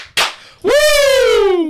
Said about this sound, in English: Two claps and a Ric Flair